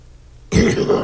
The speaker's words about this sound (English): Was that a real cough? No, I'm sorry. God, now you fucked me. I'm sorry. I don't know what's a real cough and what's a stage cough.